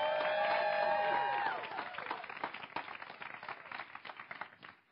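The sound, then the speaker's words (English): A crowd shouts a loud "thank you" together for about a second and a half, thanking a woman who served as an elder and is stepping down, then breaks into cheering and steady, scattered applause that gradually thins out. “So can you all just kind of scream, thank you,”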